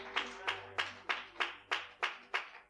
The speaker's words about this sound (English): Praise God. Clap your hands. God is good.